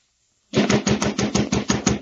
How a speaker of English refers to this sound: Well, along about midnight, I heard someone pounding on the door. I got up out of bed and went to see who it was.